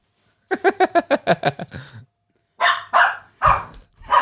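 A dog barks at a balloon in a quick run of about seven sharp yaps, goes quiet briefly, then lets out several louder, deeper barks spaced apart.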